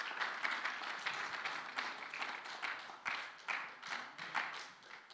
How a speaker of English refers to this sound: Are you available to Jesus today? If you are, then I want you to give the Lord a hand clap and let the Lord know you're available.